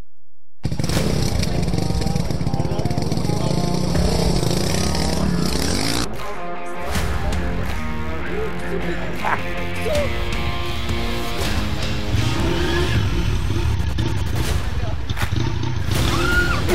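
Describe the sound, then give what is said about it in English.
A motorcycle engine revs loudly as someone learns to ride, its pitch rising and falling, then briefly cuts out before roaring back up, with people's voices mixed in underneath. “But for instance, if you're trying to learn how to ride a bike, you know, a motorcycle, sometimes it doesn't go all that well.”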